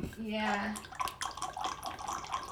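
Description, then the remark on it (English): Wine poured through an aerator, opening with a short rising, whistly gurgle and then a steady bubbling, splashing stream of liquid, fairly loud for a couple of seconds. “It just goes to show that I've never used a real aerator because normally they don't sound like that.”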